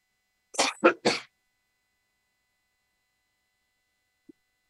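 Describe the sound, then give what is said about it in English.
Three quick, harsh coughs burst out in close succession, followed by silence and a tiny faint click near the end. “Just coughing up a lung.”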